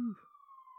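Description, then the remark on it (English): A police siren holds a steady, high electronic wail for under a second, following a brief low burst of voice at the start. “Sirens sound like they're having fun.”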